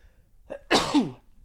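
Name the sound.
sneeze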